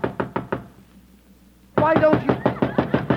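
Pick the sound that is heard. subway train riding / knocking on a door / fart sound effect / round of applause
knocking on a door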